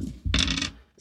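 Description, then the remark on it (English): Dice clatter and tumble across a hard tabletop in a quick rattle of overlapping clicks that lasts under a second before settling. “I got different dice than last time and it's still...”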